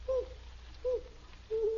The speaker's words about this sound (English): It's an owl, Margaret. That's all it is, just an owl. I don't like owls.